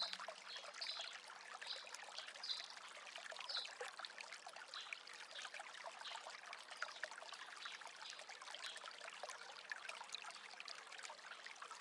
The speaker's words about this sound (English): The sound of the flowing water is calming and healing, inviting you to sit by the stream and dip your feet in.